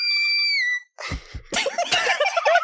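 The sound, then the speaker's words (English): Someone imitates with their voice the weirdly distorted screeching from behind a door: a high, thin shriek held for almost a second, then harsh, raspy bursts of crackling screeching, loud, with no words. “But weirdly distorted screeching. I can probably make that screech sound.”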